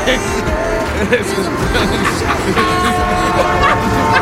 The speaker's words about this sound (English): Hey, y'all stop waving at the train. Think about that for everybody, a second. Hey, son, stay away from the train.